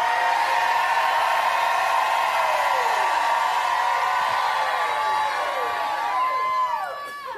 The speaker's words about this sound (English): How many doctors I got in this house jump up and shout like you never shouted in your life?